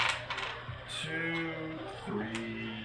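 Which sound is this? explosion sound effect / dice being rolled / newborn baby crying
dice being rolled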